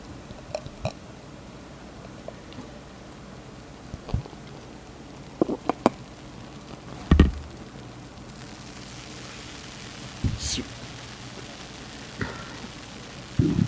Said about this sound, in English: Yeah, I'll open one too here in the mic. Let's see if you can hear some head fizzing here.